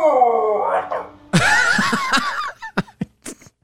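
A dog whines and howls in protest against going out for a walk: a sustained tonal moan, then a louder, wavering yowl that rises and falls in pitch, breaking into short, choppy grumbles before trailing off.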